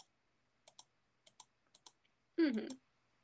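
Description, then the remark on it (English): Crisp computer mouse and keyboard clicks tap out in quick pairs, fairly quiet, as someone edits on a computer, deleting backgrounds, followed by a short burst of a voice near the end. “Also, can you hear all the clicking I'm doing in the background?”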